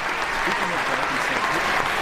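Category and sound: sound effect, applause sound effect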